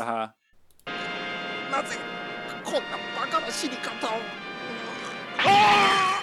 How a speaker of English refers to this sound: Through the back of Abadede's head? Yeah. He gets jacked in the skull, and then he blows up. Also. Yeah, it's like insult to injury there. Yeah. I'm actually gonna splice in his death scream here because it's. Whoever did the sound on that,